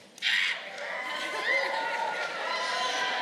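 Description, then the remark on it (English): A crowd of children in an audience scream and shout together when asked to make themselves heard, a sustained, high-pitched burst that starts abruptly and holds steady, with overlapping shrieks and cheers blending into a loud wall of voices. “Kids, let me hear you. Now's an okay time to scream.”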